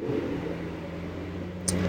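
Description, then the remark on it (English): A loud truck rumbles past close by on a highway, a steady low engine drone filling the background for a couple of seconds, with a brief higher hiss near the end. “We got a loud truck.”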